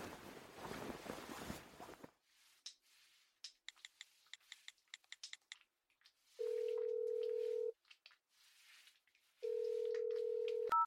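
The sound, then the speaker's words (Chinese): A burst of rustling noise gives way to a quick series of phone keypad taps, followed by two long, steady telephone ringing tones separated by a pause, clear, as someone phones a man to ask him to come over. “我现在就打电话把他叫过来。”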